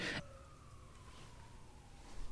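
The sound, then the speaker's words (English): Emergency sirens go by in a neighborhood, wailing steadily in the background, a thin sustained tone slowly falling in pitch as they pass, faint under a low hum of ambient noise. “There's some sirens going by and all the neighborhood dogs are just like howling.”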